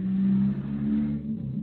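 A loud, bass-heavy car rumbles past outside, its deep engine drone steady for a moment before fading slightly as it moves on.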